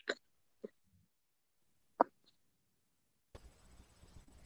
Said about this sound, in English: Did you just burp? Yeah. Yeah, you did. Burp. You burped, yeah.